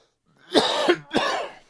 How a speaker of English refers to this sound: So awesome it made me cough.